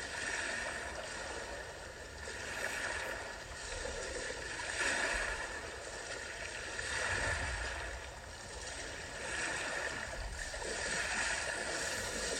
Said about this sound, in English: And then coming back to the sound of the wave.